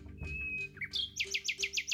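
A nightingale sings a long, pure whistled note, then a quick burst of about six repeated bright, ringing chirps, clear over a faint low background hum.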